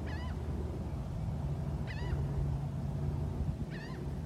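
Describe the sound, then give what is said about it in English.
Seagulls call three times, evenly spaced, with short harsh wavering cries over a steady low rumble of background noise. “Fucking seagulls are fucking in the background.”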